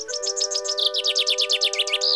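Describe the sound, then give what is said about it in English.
A bird call played on a staff of bird calling, blown like a flute: rapid, high warbling chirps trill continuously over a steady held tone, clear for about two seconds, with no talking. “He is playing the staff of bird calling. He's playing it like a flute. You can hear it call out.”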